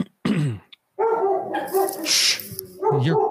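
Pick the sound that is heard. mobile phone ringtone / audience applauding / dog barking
dog barking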